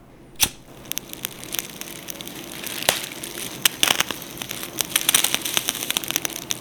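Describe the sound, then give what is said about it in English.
Fire crackles steadily over a soft, hissing roar, with irregular sharp pops and snaps scattered throughout and a few louder cracks standing out. No one speaks. “We're moving on to the burnt furnace. Cue the flames.”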